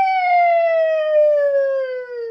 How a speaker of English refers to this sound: Sound like a siren. It's a siren.